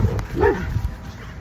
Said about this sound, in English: There's some dogs.